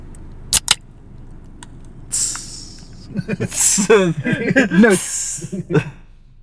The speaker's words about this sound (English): I'm gonna open this podcast while I open this beer.